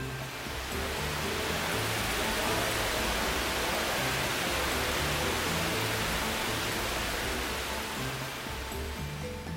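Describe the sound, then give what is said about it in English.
A steady, dense roar of rushing, churning water in a huge room with 12 giant cone-shaped softening pools at a water treatment plant, without letup, with a low mechanical hum running underneath and no voices. “This happens in a huge room with 12 giant cone-shaped pools.”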